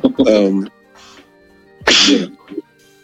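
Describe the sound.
Two loud sneezes about a second and a half apart, each a sharp, breathy burst with a voiced edge, separated by quiet background.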